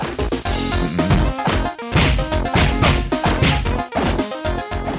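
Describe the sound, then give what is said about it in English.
Rapid, loud punching effects from a beat 'em up video game published by Activision, a flurry of sharp thwacks and smacks landing in quick succession over busy background game music, with no talking. “All right, that's that's some real punching.”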